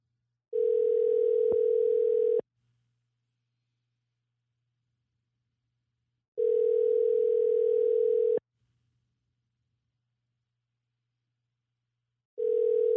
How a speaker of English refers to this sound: Let me see if I can get him to pick up real quick while we on the phone.